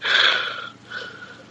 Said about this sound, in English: Listen. Oh, I'm listening. Oh my God, heavy breathing.